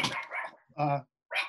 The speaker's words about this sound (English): What the hell? So, you know, my dog's going wild.